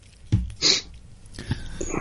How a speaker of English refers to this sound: Excuse my cough tonight, ladies and gentlemen. This is a tickly throat for myself over here.